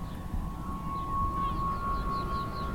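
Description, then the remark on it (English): A steady, low rushing wash of the incoming tide at the change of tide, the sea slowly flowing into a vast, sandy, muddy bay. It is continuous and even, with a faint sustained tone and a few soft high chirps above it. “You can hear the incoming tide.”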